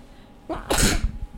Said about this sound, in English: I have to sneeze, excuse me.